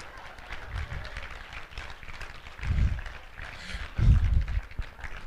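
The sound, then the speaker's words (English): An audience claps steadily in a dense, even wash, with a few dull low thumps rising out of it and faint crowd voices mixed underneath, welcoming a man being introduced. “Let's give him a great round of applause to Rocky Road.”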